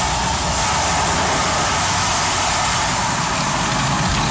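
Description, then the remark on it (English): Loud, steady roar of an automatic car wash, the biggest in the state, with big spinning bristle brushes scrubbing the sides and windshield of a car in a dense, continuous wash of noise over a low mechanical rumble, no voices. “It's pretty loud in here. I gotta be honest.”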